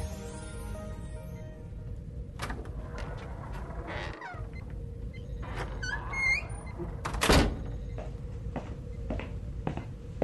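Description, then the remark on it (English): A door slams shut in someone's face with one loud thud, preceded by a few softer knocks and faint squeaky chirps over a steady low background hum. No one speaks. “Well, he basically slammed the door in my face.”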